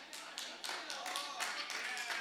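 An audience claps together, a dense patter of many hands with a few sharper rhythmic bursts standing out, fairly soft overall and continuing steadily without pause.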